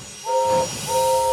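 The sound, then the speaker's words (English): A steam locomotive, the engine Gordon, sounds its whistle as it arrives: two steady, two-toned blasts, the first short and the second held longer, over a low rumbling background. “Gordon wheezed his steam loudly.”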